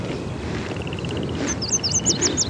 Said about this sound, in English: See that tiny yellow bird that flew into the willows next to the bison? It's a yellow warbler. It's like a ray of sunshine.